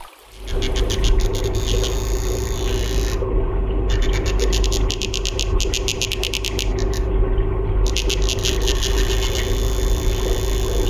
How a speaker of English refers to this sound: That pulsating drumming is courtesy of one of the world's smallest fish, the Danionella cerebrum. Now, the tiny fish are found in streams across Myanmar.